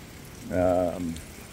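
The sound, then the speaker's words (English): A small waterfall runs with a steady, soft rushing hiss throughout, and a brief voiced hum rises over the water noise midway before fading. “Before I go further, let me show you this absolutely delightful little waterfall.”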